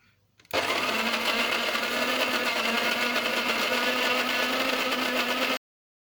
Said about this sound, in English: Like every day, put some new fresh coffee beans inside you. Now let's start the coffee grinder